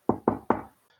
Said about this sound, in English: You knock upon the door. Yep.